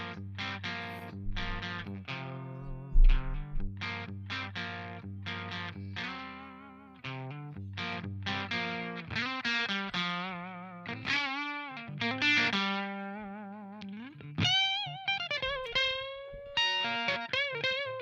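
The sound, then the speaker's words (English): A distorted electric guitar with a crunchy, Marshall-style amp tone plays chugging low chords and then bends into sustained, singing lead notes, loud with no voices. “Okay, that's more Marshall-y.”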